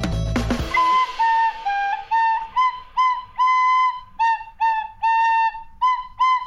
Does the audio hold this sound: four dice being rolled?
no